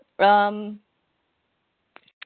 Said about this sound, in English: Dog is so loud.